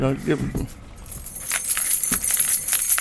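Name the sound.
keys jangling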